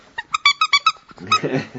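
A quick run of high-pitched yelps from dogs, about half a dozen sharp cries in a row, then a rougher bark and scuffling noise.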